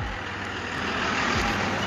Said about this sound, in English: I'm recording outside right now, so whatever you heard was a truck. Yes, this street could be quite busy during the day